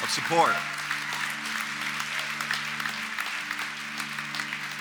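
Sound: hand clapping applause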